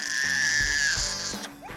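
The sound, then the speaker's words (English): An unhappy baby lets out one long, loud, shrill wail that holds steady before breaking off, followed by a brief rising whimper. “And what about the cries of an unhappy baby?”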